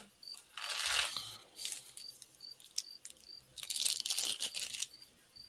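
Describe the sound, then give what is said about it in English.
Loud crunching from someone comes in two long bursts, crisp and crackly like chewing or crushing something dry, with a steady chirping of crickets repeating in the background and no voices. “Can I just say, the combination of the crickets and someone crunching?”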